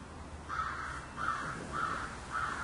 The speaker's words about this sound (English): Do you hear that? That's saying a lot more than what could ever say. The crow doing what it's doing.